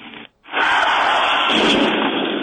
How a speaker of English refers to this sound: Oh, my God. Is that an explosion? It was worse. What is that?